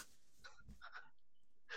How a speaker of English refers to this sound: Oh, I had a sneezing fit. I was trying to keep it quiet. Sorry.